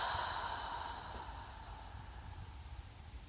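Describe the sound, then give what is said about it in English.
A soft, steady exhale of breath through the mouth for a count of four during a guided breathing exercise, drawn out over a few seconds and gently fading, quiet with no talking. “And then breathing out your mouth for four counts.”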